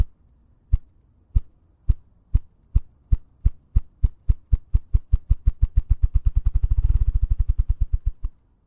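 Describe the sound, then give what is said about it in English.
Ruffed grouse drumming: the bird stands on a log or perch and beats its wings against its body, making deep, muffled thumps that begin slowly and evenly spaced, then speed up into a rapid, blurred roll before fading out. No voices are heard. “And when a rough grouse is drumming, he gets up on a log, gets up on a perch, and beats his wings on his body.”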